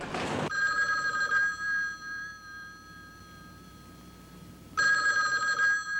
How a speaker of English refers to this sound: Don't answer that phone